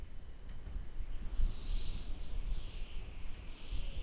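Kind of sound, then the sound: insect, crickets chirping at night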